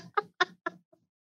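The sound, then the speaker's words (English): A goose honks four times in quick succession, sharp nasal calls spaced evenly apart, then a faint fifth note trails off into silence. “Don't know where the geese came from, Captain.”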